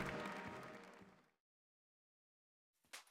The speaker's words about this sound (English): our newly qualified pilots march off to the applause of their friends and families, continuing the long and proud history of soldiers in the air.